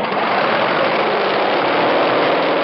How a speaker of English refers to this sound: That is not yet the sound of a jet engine. Jets, like Model Ts, need cranking to get up the speed of the engine. That's an auxiliary motor, about 25 horsepower, which is rolled up beside the plane to start it. The engine is brought to speed.